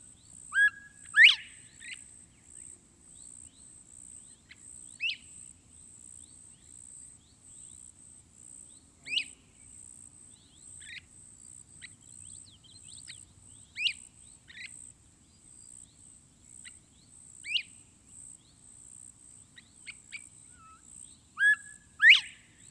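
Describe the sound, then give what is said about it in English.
A quail whistles in short, sharp calls repeated every few seconds, over a steady high drone of crickets in an otherwise quiet outdoor setting. “The whistle of the quail.”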